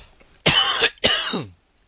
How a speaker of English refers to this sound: And I have to cough for a second. Excuse me.